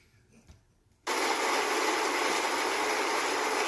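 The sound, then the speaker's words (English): After a second of near silence, a recorded live studio audience applause effect from YouTube, taken from Family Matters, bursts in and holds as a steady, dense wash of crackling hiss, so even and uniform that it resembles falling rain. “I ain't gonna lie, that sounds like rain. That don't even sound like applause.”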